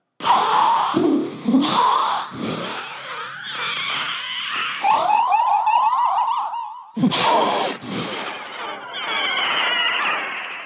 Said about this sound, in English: That's more Dianoga than I've ever heard in my entire life. The creature's off-screen roars were old dinosaur material from Edit Right, and the on-screen moans were inspired by the voice of the devil in The Exorcist.